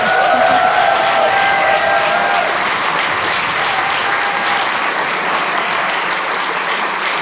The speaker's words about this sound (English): Thank you so much to our guests for listening us. A massive round of applause for the panelists, please.